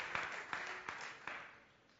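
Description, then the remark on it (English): A conference audience claps for the conference organizers in a dense patter, with a few sharper claps landing at a steady beat, then the applause gradually thins and fades out over a couple of seconds. “Let's give them a round of applause, shouldn't we?”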